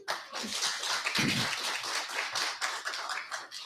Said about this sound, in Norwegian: Jeg tenker det fortjener en liten applaus.